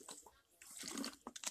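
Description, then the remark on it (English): A few quick sips of alkaline water, with soft wet slurping and gulping sounds in short bursts and no talking. “Take me a sip of water real quick.”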